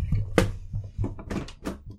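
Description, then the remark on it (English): A door opens with a sharp click followed by a series of short thuds and rustling movements as the speaker's mother steps in. “Hang on, someone's knocking on my door.”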